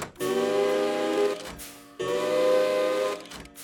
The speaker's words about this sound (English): But as the big hand struck 12, two tiny engine whistles popped out and made a wondrous sound.